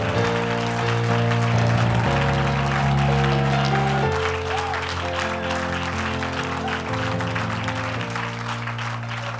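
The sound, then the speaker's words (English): A large audience claps steadily and continuously after a prayer, giving a man a hand; a dense wash of hand clapping with sustained organ-like chords playing underneath throughout. “And give him a hand clap if you think he deserves it.”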